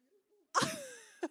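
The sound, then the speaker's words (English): A single loud sneeze bursts out with a sharp noisy blast and a trailing tonal fade, followed by a brief faint sniff-like sound; a soft murmur precedes it. “Bless you. Bless you.”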